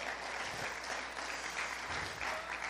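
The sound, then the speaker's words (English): An audience claps their hands to give God praise, a dense, steady wash of applause, many overlapping claps blending into continuous noise at an even, moderate loudness with no talking. “Somebody clap your hands and give God a praise.”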